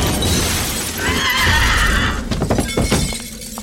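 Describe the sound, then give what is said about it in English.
A shiny red glass Christmas ornament, thrown over a bookcase, shatters loudly: a bright crash followed by a scatter of tinkling fragments that settle over a few seconds, with no voices. “With that, Byron threw the ornament over the bookcase. The glass shattered.”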